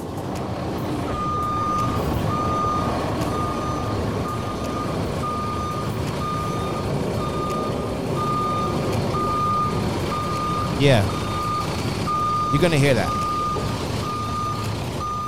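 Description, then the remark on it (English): A garbage truck's reversing alarm beeps in a steady, evenly spaced rhythm over a low engine rumble, while a man talks over it and a couple of brief squeals break in near the end. “it's like the garbage truck just passes you and everything is not coming to you”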